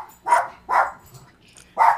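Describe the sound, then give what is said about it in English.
Three sharp dog barks ring out in an uneven rhythm, two in quick succession and one after a short pause, loud with no talking over them. “I think your dog just ended the show.”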